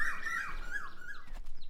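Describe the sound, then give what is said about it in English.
A cuckoo calls in a forest, its clear, wavering notes carrying over a faint, airy woodland background, with a brief soft rustle near the end. “A cuckoo called in the forest.”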